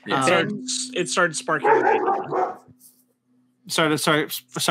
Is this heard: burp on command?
no